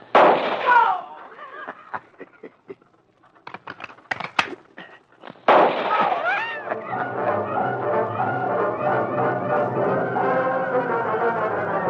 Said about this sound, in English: The Lone Ranger and Tonto were on the wagon trail when they heard the gunfire some distance ahead.